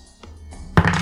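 Dice tumble on a tabletop: a couple of soft taps, then one solid wooden thunk followed by a short rattling tail as they settle. No voices.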